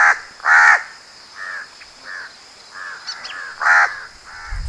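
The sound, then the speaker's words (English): Harsh, hoarse caws of an Indian jungle crow (large-billed crow) ring out in a loose series, two loud calls standing out among softer, shorter ones, with faint background hum throughout. “Now, the Indian jungle crow.”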